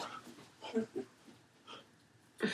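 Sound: dog whimpering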